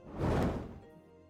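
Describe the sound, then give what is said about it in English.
A door opens almost on its own, with no one there, making a single dull, muffled thunk that swells briefly and then fades into a low, lingering rumble. No one speaks. “As the door opens, you can see the door opens almost on its own.”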